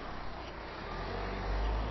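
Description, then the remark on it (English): A car passes on a road, its low engine and tire rumble swelling louder toward the end over steady outdoor background noise, with no one speaking. “Cyclist going by, car going by.”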